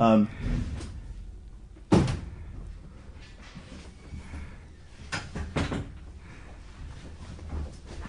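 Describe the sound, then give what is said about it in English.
A door swings shut with a solid thud, followed a few seconds later by a couple of lighter knocks and clunks, while muffled voices murmur faintly in the background. “Let's close the door.”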